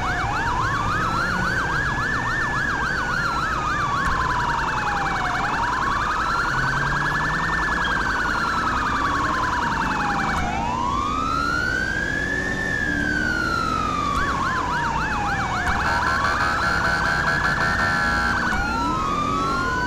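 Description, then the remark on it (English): A police car siren wails loud, sweeping up and down in a repeating cycle, with brief rapid yelping bursts layered in, over steady road and engine noise, as the car drives code 3 taking an arrested woman back to the station. “So since this is an arrest, I can go ahead and take her code 3 back to the station.”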